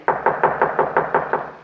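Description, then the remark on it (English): A rapid, even series of eight sharp knocks on a wooden door, fairly loud, with no voices. “Well, I'll go ahead and knock at the door while you get your camera and supply case.”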